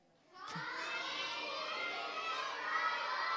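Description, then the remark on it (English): A group of children shouts "Come in, human robot" together all at once, a loud, sustained burst of voices that starts abruptly and holds steady for a few seconds. “Yell it out again, nice and loud so it can hear.”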